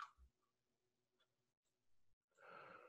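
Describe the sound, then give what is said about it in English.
A man yawns softly at around 3 o'clock in the morning: quiet breathy inhalation and low murmuring, then a longer, airy exhale swelling near the end. Faint, with no talking. “He's yawning.”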